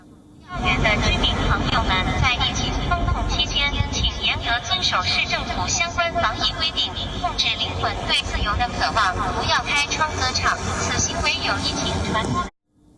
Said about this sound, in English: Shanghai residents protesting from their balconies and demanding supplies. Suddenly a drone appears. Yes, a drone. And it makes an announcement.